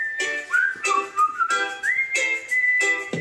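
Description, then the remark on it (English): A clear, sustained whistled melody with sliding pitches, played over a rhythmic, bright backing of repeated percussive hits, fairly loud throughout. “Oh, oh, I like the whistle.”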